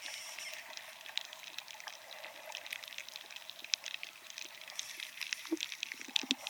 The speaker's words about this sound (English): Dunn placed a transducer microphone inside pinyon trees to hear the bark beetles that were infesting forests in the southwestern United States.